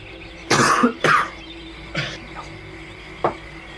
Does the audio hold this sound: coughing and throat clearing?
yes